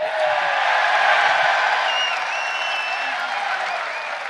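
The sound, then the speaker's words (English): A large live crowd in Perth applauds steadily with dense clapping, and a few whistles and cheers ring out above it; the sound stays loud and sustained throughout without voices speaking. “Yeah, I'm already loving this crowd, so I'll be happy to come back here anytime.”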